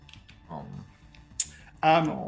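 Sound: dice being rolled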